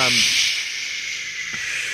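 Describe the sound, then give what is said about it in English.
A rain stick tipped over gives a steady, bright hissing cascade of tiny pellets that runs evenly for two seconds, with a voice trailing off at the very start. “So let me just tip over my rain stick here while I tell you what I loved about it.”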